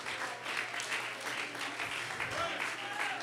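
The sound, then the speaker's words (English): A large church audience claps steadily and loudly in praise, a dense sustained wash of many hands with a faint low hum and scattered voices underneath. “Come on, clap your hands, open up your mouth. Claim the victory.”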